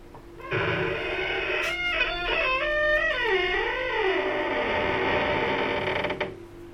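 A long, drawn-out creak of a heavy door swinging slowly shut behind the group as they enter a private room at a virtual reality open mic night, its pitch wavering and bending over several seconds, loud with no voices.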